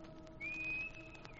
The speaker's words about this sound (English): When I come back, I'll stand in the dock and whistle. Like this.